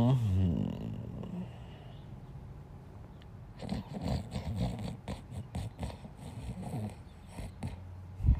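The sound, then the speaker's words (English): Rough snoring of a person asleep, with a run of snorting, raspy breaths repeating unevenly for several seconds at a moderate level, preceded by a quieter low murmur. “I'm snoring in my sleep, but I don't, can't help it.”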